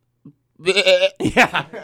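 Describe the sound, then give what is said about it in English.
A person imitates a goat, letting out a wavering, nasal bleat followed by a second shakier burst, loud with no other sounds around it. “I can give us a goat. Okay, do the goat.”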